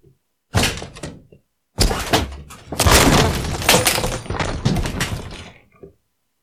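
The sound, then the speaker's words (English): Loud banging and crunching as someone smashes a package by hand, without a knife, to open it: a burst of impacts, a pause, then a longer stretch of rough knocking and scraping. “No, I'm trying to open it. I've been smashing it up.”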